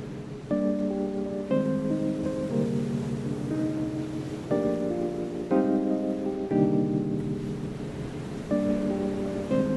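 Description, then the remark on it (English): A steady wash of ocean waves fills the background beneath soft, sustained musical chords that shift every second or so; no one speaks. “Feel the energy of the ocean gently flowing into your body, giving you complete belief in yourself and what you can accomplish.”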